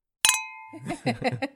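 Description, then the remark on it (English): Beer glasses clink together once in a bright, sharp toast at an Irish pub in North Cloverdale, the ring fading over about half a second before voices start talking. “Well, cheers, Tim Fraser.”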